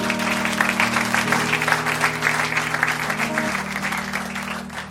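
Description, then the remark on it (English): A church audience claps steadily in a dense, continuous wash of applause for its members, while sustained keyboard chords hold underneath and shift pitch partway through. “You are making things very easier for us, and you deserve a round of applause.”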